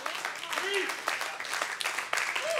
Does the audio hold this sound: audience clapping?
yes